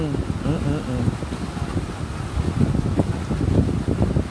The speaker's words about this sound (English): Damn, the wind in the background is making the waves on this thing go high. I can hear it in the background, I'm sure.